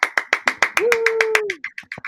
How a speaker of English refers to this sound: And we should be proud of ourselves. Round of applause.